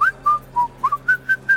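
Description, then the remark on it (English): A person whistles a short, bright tune of about seven quick notes in a steady rhythm, clear with no talking. “Put it there, fellow whistler.”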